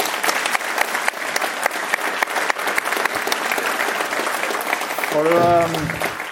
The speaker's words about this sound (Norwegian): En liten applaus til